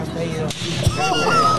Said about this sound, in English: And then he's knocked out, by the way. He's knocked out by the watch slap. This. Please, it's worthy of watching again because the slap is so fucking loud.